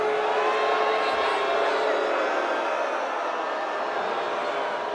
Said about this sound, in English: The ball down the court. You just hear her getting booed.